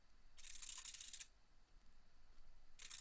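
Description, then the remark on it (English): Soft, rapid mechanical clicking from a braille display refreshing its pins as it auto-scrolls by itself without being touched, coming in two short bursts separated by a quiet pause, with no voices. “You might just be able to hear it clicking in the background there. It's auto-scrolling all by itself.”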